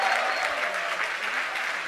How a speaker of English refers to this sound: A lot of clapping in the background.